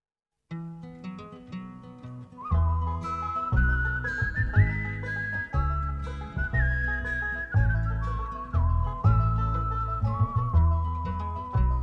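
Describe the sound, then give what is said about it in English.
A lilting folk tune: a clear, high whistled melody rides over steady instrumental backing, starting after a short accompaniment intro and carrying on loudly and continuously without any singing. “I hope they have work, and I hope that on occasion they fill their lungs and sing out a song like the Whistling Gypsy on Spalpeen Fánach, complete with their own bawdy adaptation of the chorus.”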